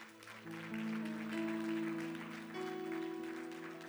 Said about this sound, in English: I wonder if those around them can just clap and just thank God for that.